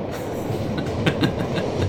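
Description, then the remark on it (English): A train rumbles past, its steady low roar punctuated by a few sharp rhythmic clacks from the wheels on the rails, with no voices. “Yeah, the train going by.”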